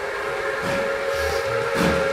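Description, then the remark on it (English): A steam train idles at the station in New Carlisle, about to depart, with a steady, sustained whistle tone over a hissing wash of noise and low rhythmic rumbling chuffs, continuous, with no voices. “They finally managed to successfully find each other in the streets in New Carlisle, and they rushed to the train station together just as the train was about to depart.”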